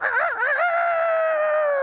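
A single loud rooster crow, opening with a wavering, warbling rise before settling into a long, sustained note that fades slightly in pitch at the end, heard alone with no talking.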